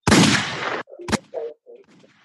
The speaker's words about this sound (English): Goddamn gun sound.